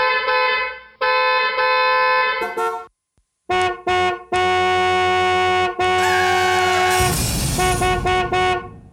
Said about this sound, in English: There's car horns blaring and screams from the street.